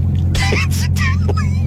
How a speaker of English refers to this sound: Love the sound. Dodge Charger Daytona SRT. That's an electric vehicle.